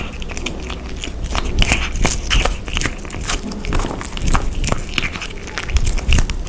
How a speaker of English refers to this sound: presents Kitten Eating Sausage